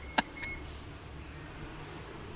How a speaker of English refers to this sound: I can tell by the bus signal that our time is up